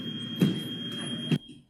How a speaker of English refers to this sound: You hear the door open, him leaving. Squeak, squeak.